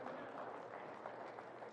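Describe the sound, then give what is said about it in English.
A church audience claps together at the preacher's request for the men in the house, producing a steady, dense patter of many hands with a few sharper claps standing out. There is no speech over it. “Some man in this house give me a little hand clap.”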